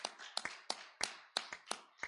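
An audience claps their hands together in a steady, even rhythm, about seven sharp, bright claps in quick succession, with no one talking over them.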